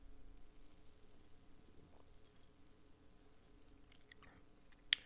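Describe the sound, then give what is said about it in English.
Someone sips an IPA beer, with soft wet mouth and swallowing noises over a quiet background, ending in a single sharp click like a glass being set down. “But first, let's sip the beer.”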